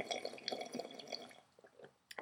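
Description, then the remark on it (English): Someone makes a wet, gurgling drinking noise with their mouth, imitating pouring some out for Gordon Hayward: a run of quick slurping, bubbly bursts that thin out, then one last sharper gulp after a short pause. Fairly quiet, with no talking. “Wait, you want to make a weird drinking noise again?”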